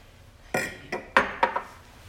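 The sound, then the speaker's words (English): Glasses clink together in a toast: four bright, ringing chinks spaced unevenly over about a second, each with a short shimmering decay, with no talking. “We have a little glass of champagne, or champagne without alcohol.”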